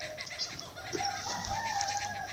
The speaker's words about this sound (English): Did you hear the rooster? Oh, I sure did.